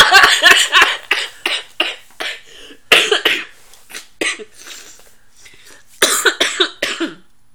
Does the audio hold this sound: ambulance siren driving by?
no